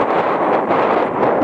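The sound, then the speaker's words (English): Loud, steady wind buffeting a microphone, a dense roaring rush that fills the whole clip with gusty swells and no pauses. “Oh, very windy.”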